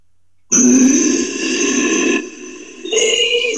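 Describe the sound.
A person imitates a low growl with their voice: a loud, rough, sustained rumble lasting about three seconds, dipping briefly before swelling into a harsher final push.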